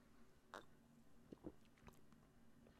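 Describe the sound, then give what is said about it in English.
Quiet mouth sounds of someone sipping beer: a soft slurp, a few gentle swallowing gulps, and a sharp little click at the end, with no talking. “Okay, just took my sip of the beer, and yeah, that is straight citrus.”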